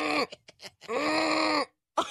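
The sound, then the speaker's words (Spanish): A person imitates a ram's bleat with a few short, wavering vocal bursts followed by one long, strained, nasal baa, then a brief final burst after a pause. “Pero mira el carnero, me quedó mejor.”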